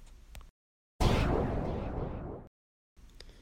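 A single loud gunshot cracks out of near silence, its blast trailing off in a long rumbling echo for over a second before stopping abruptly.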